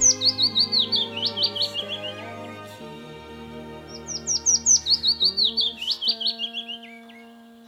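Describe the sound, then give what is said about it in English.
A small migratory songbird, picking insects off a hawthorn bush, sings two quick phrases of bright, high chirps, each a rapid series of notes tumbling downward in pitch, over a steady background of sustained low tones. “And it's right in front of us now, picking insects off a hawthorn bush.”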